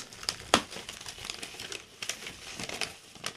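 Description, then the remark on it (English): Crackly crinkling of bubble wrap being pulled apart while a mailed package is opened, a steady stream of rustles punctuated by a few sharper snaps, with no voices. “There's bubble wrap is what I'm seeing. Bubble wrap.”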